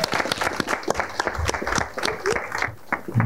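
An audience at a talk on commercial property finance applauds steadily for a few seconds for the next speaker, dense overlapping claps with a faint murmur of voices underneath.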